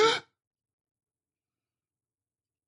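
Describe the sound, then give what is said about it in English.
A single quick, sharp gasp of breath, fairly loud, over in a fraction of a second and followed by silence. “Genevieve looked at Luke and gasped.”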